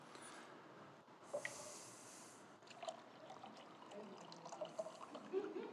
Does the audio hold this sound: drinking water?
yes